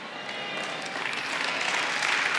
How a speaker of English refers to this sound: See, you know why 10% of the room is clapping? Because we don't know God's word.